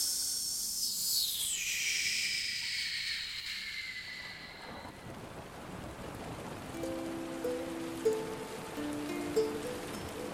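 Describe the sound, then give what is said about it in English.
Steady rain falls throughout, a continuous dense hiss of drops on a surface at moderate volume. A high whooshing sound opens it, and faint tones surface later; nobody speaks. “Hark, can you hear that? It's raining.”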